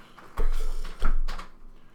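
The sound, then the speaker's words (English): Two solid knocks on a wooden table by a player during a card game, about half a second apart, each a dull thud with a brief ringing tail; no voices. “Are you knocking?”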